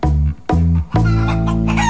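A rooster crows loudly on its own: two short harmonic bursts followed by a long, drawn-out final note that holds steady to the end.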